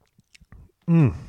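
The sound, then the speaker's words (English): A few soft, wet mouth clicks of someone sipping white wine, followed by a loud, satisfied vocal 'ahh' that falls in pitch. “Anyway, this is really good, and I need another sip if I'm going to do this reading.”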